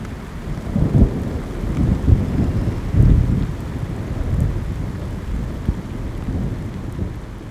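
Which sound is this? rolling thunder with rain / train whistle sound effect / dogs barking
rolling thunder with rain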